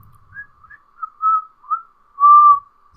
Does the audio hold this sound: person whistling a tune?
yes